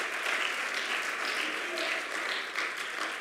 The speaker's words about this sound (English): Do you believe it tonight? If you do, clap your hands to the Lord. Hallelujah.